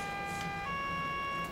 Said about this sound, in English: The procedure is quite simple. If a fire alarm is sounded or somebody spots a fire, they will set off an alarm which sets off an intermediate alarm, and that prepares people in case a continuous alarm comes out to evacuate.